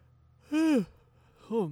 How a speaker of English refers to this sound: But I had to yawn.